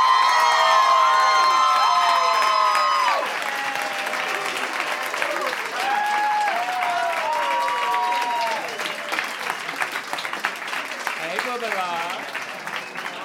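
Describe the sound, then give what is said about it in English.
A crowd claps steadily for over ten seconds while high whoops and cheers rise above it, loudest in the opening seconds before the applause eases slightly and carries on; the applause is for Alaska Thunderfuck, the latest winner of RuPaul's Drag Race All-Stars. “Guys, another round of applause for Alaska, please.”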